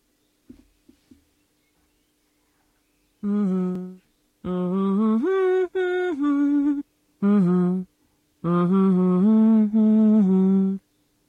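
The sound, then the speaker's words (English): An Amazon Alexa smart speaker's voice assistant, asked whether it can hum, hums a short wordless tune in four phrases, its mid-pitched tones stepping up and down, after a faint click and a few seconds of silence. “Alexa, can you hum?”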